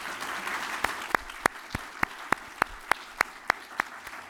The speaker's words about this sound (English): So again, I would like us to give a round of applause to acknowledge